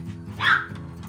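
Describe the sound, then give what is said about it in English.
A single sharp dog bark rings out, brief and fairly loud, over a low steady background hum. “My dog barked as soon as I said, and this is, he barked.”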